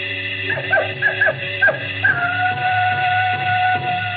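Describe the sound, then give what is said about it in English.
A jackal howls in the distance on the veldt: a run of short, high, yipping cries rising and falling, then one long wavering wail held over a steady low background hum. “The howl of the jackal in the distance, the thump of distant antelope feet on grassy sod, and the papery rustling of the great vultures that wheeled and circled under the yellow, burning sun.”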